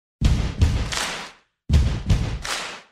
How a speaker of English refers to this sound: Psst, smarty pants, hear that? That could be the opening stomps and claps from the rock song